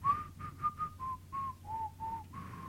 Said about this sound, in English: is the same as the Aladdin riff, which is the stereotypical music they play when we cut to China or Chinatown in a movie? Yeah, right. So just whistle.